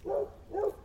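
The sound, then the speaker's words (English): A dog barks twice in quick succession, two short, moderately loud woofs about half a second apart, with no talking around them. “shut up, dog.”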